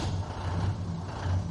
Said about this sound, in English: Ooh, that sounds like a truck.